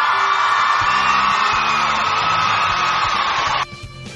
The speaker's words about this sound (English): Even though it's not SIG-related, I might as well give you an applause for that.